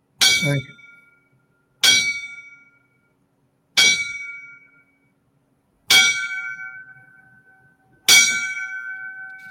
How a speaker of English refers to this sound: I'm gonna give him a five bells, bro. Just wonderful. I'm gonna give him five bells.